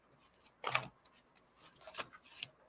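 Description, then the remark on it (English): A deck of oracle cards being shuffled: a handful of quiet, crisp papery flicks and riffles in an irregular rhythm, with no voices. “Let's see if I can shuffle these without dumping them all over the floor.”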